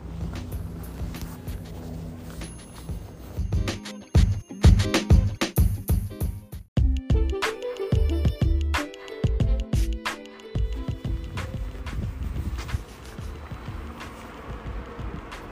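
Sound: street traffic noise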